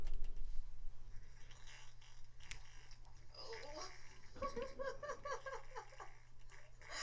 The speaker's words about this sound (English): Here's an epic manatee fart that we can end on.